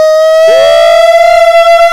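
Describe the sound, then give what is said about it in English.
Two voices hold a loud, sustained wail in harmony, imitating an air-raid siren; one stays on a steady high note while another swoops and slides beneath it. “That's like a fucking nuke siren. We were harmonizing.”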